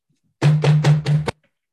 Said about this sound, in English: But moments afterwards, you all can hear shouting from below, and there is a knocking at the door.